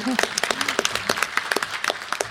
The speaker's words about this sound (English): And if we could have a picture, and now we can applaud.